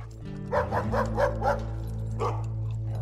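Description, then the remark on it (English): A police dog, brought by a riot squad into workers' barracks, barks in a quick run of about five sharp barks, pauses, then gives one more, over a steady low hum. “And I go upstairs and was watching what's going on, and then all of a sudden I see the police come with a dog.”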